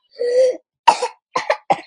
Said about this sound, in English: Stop, cough, cover your mouth.